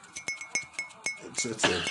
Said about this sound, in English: Why is your clinkety clinks dull? Clink clink clink clink clink. Your clinks are dull.